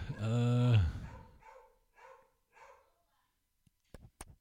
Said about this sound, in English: Dog is going nuts over this trivia question.